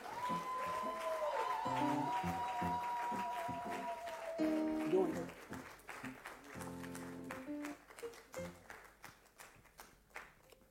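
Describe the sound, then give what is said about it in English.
A crowd claps unevenly for a reverend being welcomed, the scattered claps mixing with a sustained musical tone and some voices before thinning into sparser, irregular clapping. “If you are clapping, clap properly.”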